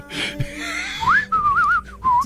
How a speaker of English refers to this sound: He's like, I'm going to hang a solo. Oh, guys, you know the one thing that no one ever does, a whistle solo?